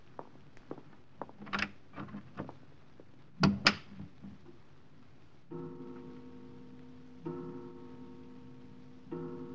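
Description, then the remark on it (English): A door that was left unlatched opens as someone walks in, with a few soft clicks and creaks, then a sharp clunk of the latch. A steady low tonal drone follows, with no talking. “The door was unlatched.”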